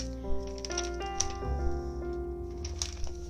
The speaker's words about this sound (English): Sorry for my paper crinkling.